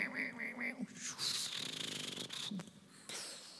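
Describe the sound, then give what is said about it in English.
A duck call blown to call in ducks during duck season: a few short quacks, then a longer raspy run of rapid quacks, and a final drawn-out call. It is loud and nasal, with no talking. “Call them in.”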